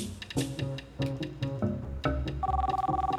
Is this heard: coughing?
no